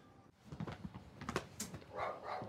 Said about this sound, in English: Uh-oh. Attack dog.